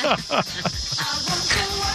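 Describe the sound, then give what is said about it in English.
A steady, high-pitched drone of cicadas buzzing continuously throughout, fairly loud, with some voices murmuring underneath. “That sounds annoying, but they taste great.”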